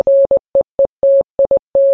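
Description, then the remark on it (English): A clean, steady electronic tone keys on and off in a pattern of long dashes and quick dots, like a Morse code message beeping out alone with no voices. “What's the message? I don't know Morse code.”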